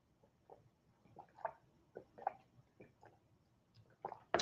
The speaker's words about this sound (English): A little water break.